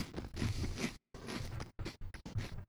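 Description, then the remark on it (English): Loud, crisp crunching from biting into a puffed, pig-ear-shaped snack with a texture like packing peanuts: one long grinding burst, a second one after a brief pause, then a few quicker chews in a row. No one speaks. “It looks a little bit like the texture of packing peanuts, the kind that you might use to move your home.”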